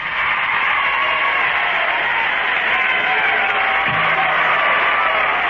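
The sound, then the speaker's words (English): A large crowd roars continuously, a dense wash of cheering and shouting voices that stays loud and steady throughout, with no single voice standing out. “That's a great crowd, isn't it?”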